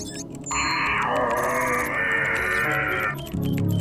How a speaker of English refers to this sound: When I scream, I make that sound, guys.